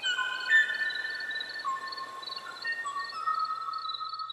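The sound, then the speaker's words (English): A male Kauai o'o, a Hawaiian bird now considered extinct, sings its mating song alone in the last known recording of the species: clear whistled notes layered in long, sustained tones that shift in pitch, steady and moderately loud against a quiet background with no talking. “You are listening to the last known recording of a mating song of the Kauai o'o, a Hawaiian bird now considered extinct.”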